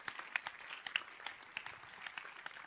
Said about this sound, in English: Help me congratulate Basanta leaders who are doing nothing, but today they did something small. Clap for them.